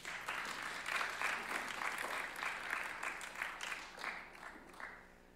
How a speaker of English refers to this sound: But okay, let's get our next person, Terry. Let's give a round of applause for Terry.